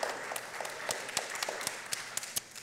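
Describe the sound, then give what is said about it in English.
An audience breaks into applause, a dense wash of clapping with sharp individual claps popping out irregularly over a steady crackle, moderately loud and without any talking. “Yes, that's worth applauding.”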